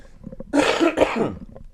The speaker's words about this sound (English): I have to cough. Hang on.